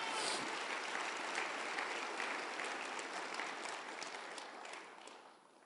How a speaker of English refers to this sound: Clap unto the Lord. Thank you, Lord.